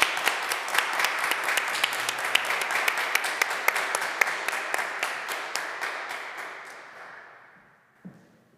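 A roomful of people applauding together in a reverberant chapel, dense overlapping claps with a few sharp louder ones standing out, gradually thinning and fading out over several seconds. The applause is a clap offering to God for a reunion organizer.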